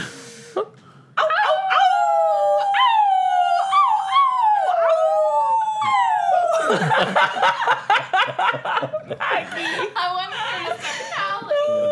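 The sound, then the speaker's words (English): Several people let out loud, wavering howls, their voices rising and sliding downward in long overlapping wails like wolves, before breaking into choppy laughter and chatter. “You have to start howling.”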